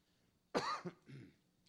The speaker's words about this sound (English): And excuse me, I'm fighting a cough, so I might cough periodically.